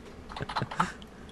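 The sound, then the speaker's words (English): A short burst of typing on a computer keyboard to type in the chat on Twitch, several quick clicky keystrokes in an irregular rhythm, fairly quiet, with no voices. “We heard you clicking on the keyboard, so it must be legit.”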